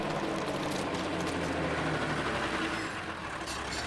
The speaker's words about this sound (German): Halt! Hört ihr den Wagen? Er ist auf den Parkplatz gefahren.